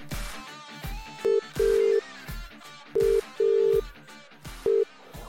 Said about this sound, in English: It starts off literally with the phone ringing, so from the very start.